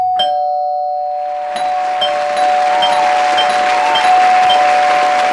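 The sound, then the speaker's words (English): A doorbell rings six times in quick succession, marking six home transactions by A. Cole Realty in the Triangle. Bright chimes stack up against a steady ringing tone and a wash of background noise, with no one speaking. “And that deserves, Angie, six doorbells.”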